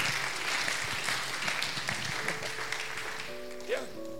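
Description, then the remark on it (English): A crowd claps in a dense, steady patter of overlapping hand claps for about three seconds, then fades as a sustained tone and a brief voice come in. “I thought the women were going to clap.”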